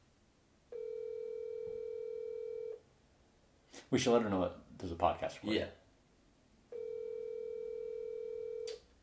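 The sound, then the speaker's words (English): An outgoing phone call's ringback tone sounds twice, each a steady two-second electronic burr, with people talking briefly in the gap between the rings. “She better answer.”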